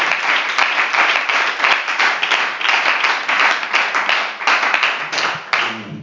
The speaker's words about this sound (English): So let's clap our hands to the Lord.